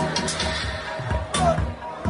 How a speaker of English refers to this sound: It's Mazzoli's, an outdoor barbecue restaurant that basically turns into a block party on weekends. Huge crowds of young people come here to eat, drink, and dance, while stray dogs feast on scraps.